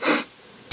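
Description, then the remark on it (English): A quick, breathy sniffle, followed by a short pause and the start of another sharp sniff, with no talking. “He brought the sniffle bag.”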